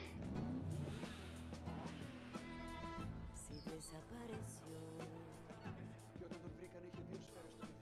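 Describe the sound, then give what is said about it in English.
Loud car engines rev and roar as cars race while being filmed for a movie, with a camera chasing the cars, the pitch climbing and falling in a dense, continuous wash of motor noise. “I love the feel that gives you there, chasing the cars.”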